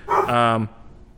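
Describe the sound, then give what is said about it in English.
A single drawn-out dog bark, fairly loud, lasting about half a second before dropping into a quiet background with no other sounds. “Those are my dogs.”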